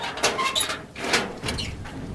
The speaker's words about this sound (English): After several phone calls, one of them has arrived now and is opening the gate.